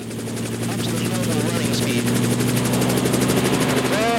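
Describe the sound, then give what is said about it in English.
A helicopter's steady engine drone with strong low harmonic hum and a rapid, regular rotor chop pulsing throughout, loud and continuous, with faint voices murmuring underneath, as the lever is pulled up and the engine pushes the rotors harder before takeoff. “the rotors are harder to push through the air, so we need to push them harder as well.”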